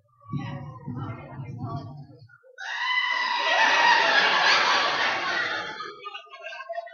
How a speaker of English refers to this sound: why don't you show us, if you've never heard a goat, this is what a goat genuinely sounds like.